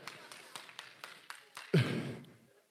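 Steady, rhythmic handclaps about four per second, then a sudden louder swell of crowd noise that fades out after a second.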